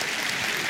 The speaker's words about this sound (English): And you clap, my friends, because you know.